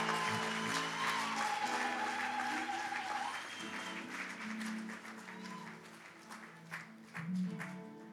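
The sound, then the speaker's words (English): A standing audience claps together in praise of Jesus, a dense, steady wash of applause that holds for several seconds, with sustained musical tones sounding underneath. “Come on, let's give Jesus the hand clap of praise.”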